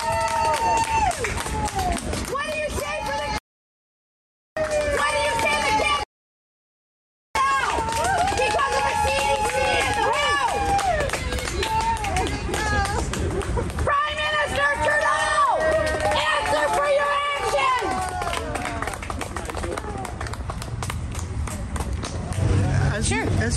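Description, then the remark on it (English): Liberal Party staffers standing in a line cheer and clap continuously while a woman yells vaccine-related concerns over the din; loud, with two brief moments where the sound cuts out completely. “Liberal staffers formed a line in front of her, and the more she yelled, the more the staffers cheered and clapped.”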